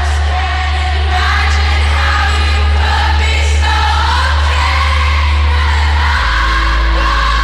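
A large concert crowd sings along loudly and continuously, a dense wall of voices with shifting melodic lines over a steady low rumble, with occasional whoops and yells rising above.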